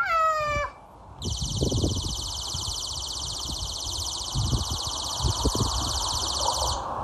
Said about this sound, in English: And that noise goes on every time they're out here. All right. So the theory is that the neighbor has set up a noise alarm for his children.